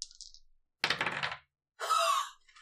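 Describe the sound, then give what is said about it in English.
Dice rolled for a constitution saving throw with advantage clatter across a hard table in a few quick bursts, a brief rattle followed by a longer tumbling roll and a bright, ringing clack as they settle. No one speaks. “Yeah, roll me a dice.”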